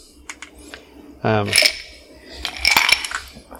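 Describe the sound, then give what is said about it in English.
Ice cubes clatter into a glass for a gin and tonic in two bursts, bright clinks and rattles, with a faint low hum underneath and no talking. “Ice cubes.”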